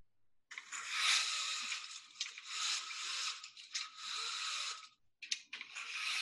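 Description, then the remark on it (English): Window blinds being closed: a bright, raspy rattle of slats and cord that runs in several uneven bursts over about six seconds, with short pauses near the end and no voices. “Closing window blinds.”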